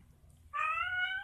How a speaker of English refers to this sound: Well, my cat seems to disagree with me.